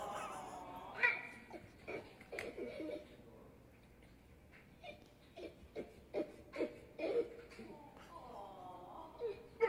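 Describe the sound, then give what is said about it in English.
A dog whimpers in high, wavering whines after its owner leaves for a walk without it, a few drawn-out cries at the start and again near the end, with soft snuffles and small movement noises in between. “Challenge: tell your dog you're going for a walk and pretend to forget them.”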